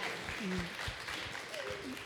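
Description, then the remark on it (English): A steady patter of clapping from a group, dense and continuous throughout, with a couple of faint voices murmuring underneath. “Clap for that.”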